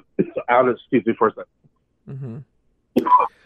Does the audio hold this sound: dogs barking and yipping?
no